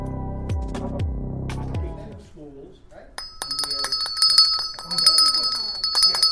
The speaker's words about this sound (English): Is that the dinner bell with your finger?